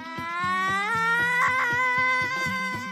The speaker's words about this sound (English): As they are about to walk inside, you can hear a familiar scream running by in terror.